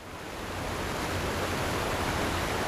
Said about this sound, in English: He says at the time, you could see foam falling over the Slater Mill waterfall.